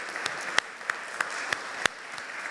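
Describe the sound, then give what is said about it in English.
An audience applauding the choir, a dense wash of many hands clapping with a few sharper individual claps standing out at a steady, loosely regular pace, no voices over it. “Our choir, who I'm sure they can hear your applause, if you applaud loudly enough, they'll hear it down there.”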